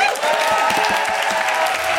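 A crowd applauds steadily, dense overlapping claps forming a loud, continuous wash of sound that holds at an even level for the whole couple of seconds.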